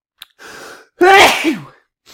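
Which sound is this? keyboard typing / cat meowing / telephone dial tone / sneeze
sneeze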